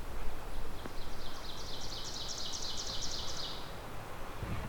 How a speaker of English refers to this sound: Both the ovenbird and black Bernian like older forests, so. That's what we're in right now, mixed deciduous. I hesitate to say old growth, but older. It's a mature forest.